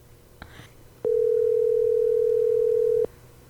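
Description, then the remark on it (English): A phone's outgoing ringing tone sounds once while calling a man in Georgia late at night: a steady, fairly loud electronic hum lasting about two seconds, preceded by a soft click. No one speaks. “You want to call him?”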